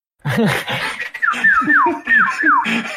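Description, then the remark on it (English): A person whistles a short tune of about five sliding, falling notes in quick succession, the whistle song from the game The Legend of Zelda: Breath of the Wild, fairly loud, after a moment of voiced sounds. “The whistle.”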